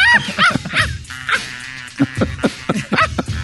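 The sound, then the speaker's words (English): A dog barks and yips repeatedly in short, excited bursts, some high and whiny, fairly loud, with brief pauses between the calls. “Stop it, dog.”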